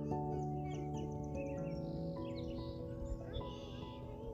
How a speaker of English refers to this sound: While you hear the voices of these beautiful children playing in the park. You hear the sound of the birds chipping. You hear the wind blowing.